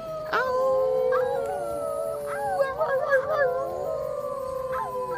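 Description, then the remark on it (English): Several plaintive, dog-like howls overlap in a mournful chorus, long wavering tones sliding up and down in pitch, fairly loud for about five seconds with no talking; the howls are cries for help. “and with that, all of them, even Chondro and Lupo, joined in, and they all howled plaintive cries for help, and howls just a howl.”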